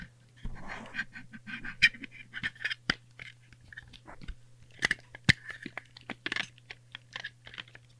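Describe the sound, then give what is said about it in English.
Foldable headphones being handled, with scattered sharp plastic clicks and snaps among soft creaks and rustling, over a faint steady low hum and no talking. “Foldable headphones.”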